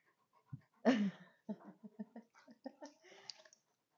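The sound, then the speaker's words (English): Heavy breathing: one loud, rough huff followed by a quick string of shorter, snuffly breaths in an uneven rhythm, with no talking. “That's not me heavy breathing”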